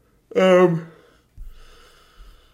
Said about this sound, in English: Oh, jeez. This is a big yawn. Yeah, that was a big one. I could have held that one out if I wanted to.